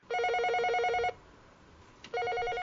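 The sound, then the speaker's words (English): A telephone bell in a telephone booth outside a house rings in two bursts, each a rapid warbling trill lasting about a second, separated by a short pause. The ringing is loud and clear with no voices. “That sounds like the telephone booth outside my house is ringing.”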